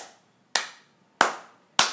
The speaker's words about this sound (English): So you do one clap. Do it.